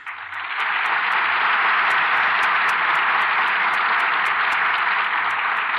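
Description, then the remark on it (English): Sustained, loud applause from a large studio audience as the curtain falls on a radio production of Slattery's Hurricane, applauding its stars Maureen O'Hara and Veronica Lake; a dense wash of clapping that fills the whole stretch at steady strength with no voices heard. “The curtain falls on Slattery's Hurricane, and here are our stars who certainly deserve your applause.”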